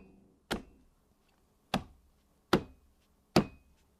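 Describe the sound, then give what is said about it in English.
Four sharp, hollow thumps knocked out by hand to mimic the thumping heard every time a toilet was flushed, unevenly spaced with short decays and quiet pauses between them; no one speaks. “There was like a thumping every time they flushed the toilet.”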